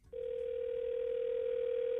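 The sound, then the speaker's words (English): A steady, unbroken telephone dial tone hums loud after a phone call is disconnected, holding one pitch without change after a brief quiet start, with no voices over it. “I believe we were disconnected.”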